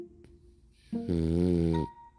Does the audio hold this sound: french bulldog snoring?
yes